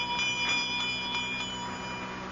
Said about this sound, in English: I'm trying to see where that bell came from. What bell? It's been ringing ever since you went up with Sheila